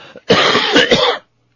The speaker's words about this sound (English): Oh, and speaking of my cough, which I'm coming along just fine, getting the last of the dark green stuff out of there.